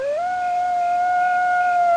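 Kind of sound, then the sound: animal, coyote howling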